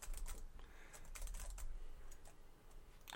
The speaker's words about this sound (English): Okay. You can hear all my typing on the thing? That means he's working. No, I just push the buttons and look at you and pretend.